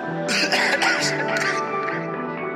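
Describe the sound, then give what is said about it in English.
A few harsh, raspy coughs burst out in quick succession, then fade into a steady background murmur. “She gonna hear me cough, but I ain't sick.”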